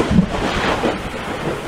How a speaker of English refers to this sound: That was like a gunshot went off. A block away. Lightning.